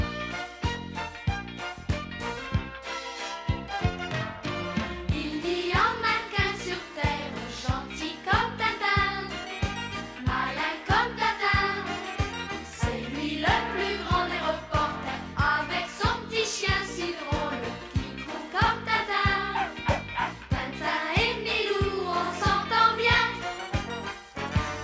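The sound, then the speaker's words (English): A catchy, upbeat pop song about Snowy, Tintin's dog, plays throughout, with a steady driving beat, bright layered instruments and a melodic sung chorus, loud and full from start to finish. “Let's take a listen to the song.”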